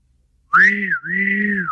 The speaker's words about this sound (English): When there's any danger, the whistle blows.